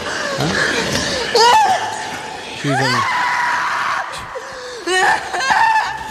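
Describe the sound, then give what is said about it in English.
A woman lets out several sharp, high-pitched screams in bursts in a film clip being played, rising and falling in pitch, with short pauses between them over a steady background hiss. “She didn't scream at all in that movie, though, yeah.”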